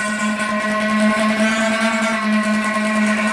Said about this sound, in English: your car wheels run and glisten over that and make this kind of sound